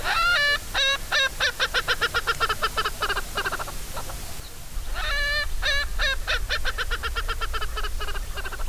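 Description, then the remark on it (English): Loud, harsh laughing cackle of an Erckel's francolin, a fast run of repeated calls that speeds into a chattering series, pauses briefly, then starts again, prominent over faint background noise. “If you hear a loud laughing cackle, but there's no people around, there's a good chance there's an Urkel's Franklin nearby.”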